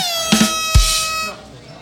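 A loud, brassy air horn blares in one sustained honk lasting over a second, with a couple of sharp thumps near its start, then cuts off and leaves a faint ringing tail.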